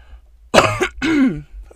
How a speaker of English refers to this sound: Got the winter cough.